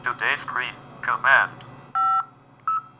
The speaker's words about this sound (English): Oops, sorry folks, I just dialed the wrong number. Anyway, let me try again. I think I hit the wrong keypad.